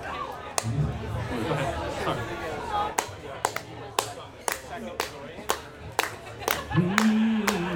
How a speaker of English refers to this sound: So you guys clap. Yeah. Yeah. Go ahead.